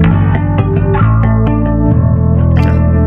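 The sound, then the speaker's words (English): A guitar with a clean tone plays sustained, shimmering chords and picked notes drenched in a warm, wavering vintage chorus effect from a Cortex multi-effects unit, loud with no one talking. “Is that chorus from a multi-pedal or? And it's part of the Cortex.”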